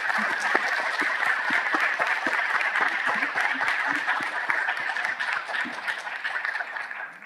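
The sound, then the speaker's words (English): Steady applause from an audience fills the whole stretch, many hands clapping in a dense, continuous patter at a fairly loud, even level without fading out. The audience applauds three panelists at the end of a professional development seminar. “Before we do, please join me in giving them a round of applause and thank you, ma'am.”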